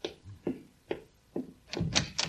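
Four evenly spaced footsteps approach as Rochester goes to answer the door, followed by a louder clatter of a door latch and the door being pulled open, with no talking.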